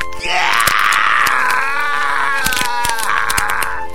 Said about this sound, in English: As the sickening sound of bones crunching inside his shoe resonate out, Ace drops the super soaker and doubles over in pain.